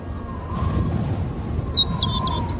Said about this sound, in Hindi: और ऐसा हो भी क्यों ना, क्योंकि दार्जिलिंग की जमीन है वो। मतलब चिड़ियों की आवाज जब कानों में पड़ रही थी तो मानो सुकून का दूसरा नाम पता चला।